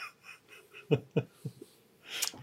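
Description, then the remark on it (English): A small, stifled yawn: a few soft breathy catches and short voiced gasps, ending in a brief airy exhale. It is quiet, with no talking. “I just did a mini yawn, so.”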